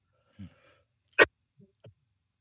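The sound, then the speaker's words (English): A single sharp, harsh cough bursts out loudly, with a softer throaty sound just before it and two faint, brief coughs or grunts trailing after. Nobody talks. “Man, we'll have to get you a cough button.”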